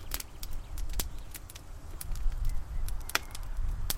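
A campfire crackling on its own, with irregular sharp pops and snaps scattered over a soft, steady low rumble of burning, one louder crack standing out near the end.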